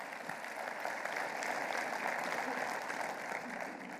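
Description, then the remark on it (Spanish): A crowd claps together in a steady, dense burst of applause given in praise of God, filling the whole moment at an even, fairly loud level, with faint voices mixed in beneath the clapping. “Está conmigo, y dale un aplauso al Señor por lo bueno que es.”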